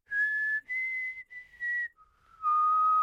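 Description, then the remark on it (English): A person whistles a short four-note tune, clear: two higher notes, a slide, then a drop to a lower held final note. No one speaks. “So we both love the Hunger Games. So just randomly, we'd go...”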